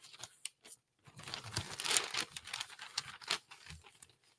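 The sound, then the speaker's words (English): Toilet paper crinkles and tears in a run of irregular, crackly bursts lasting a few seconds, with short pauses between handfuls and no talking. “Again, the toilet paper record.”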